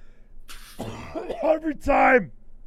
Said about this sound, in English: It's going to be a 5-star coughing podcast. Everyone's going to love it. They're going to clip the coughs and just have a whole audio of just your coughs.